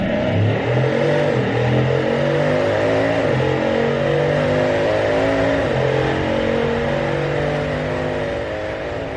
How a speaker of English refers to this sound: The track is calling and both cars promise you epic speed. You choose the Chiron for the first lap of the day. Now, turn up the volume on your headphones.